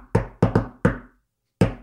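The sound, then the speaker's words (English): A playful, rhythmic knock on a door by a Grubhub delivery driver leaving food outside: five sharp, fairly loud raps in a bouncy pattern, with a quick double in the middle, then a pause before one final knock. No voices. “But the guy did like a cute knock.”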